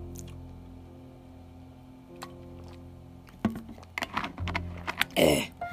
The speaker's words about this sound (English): That's some drink of the water.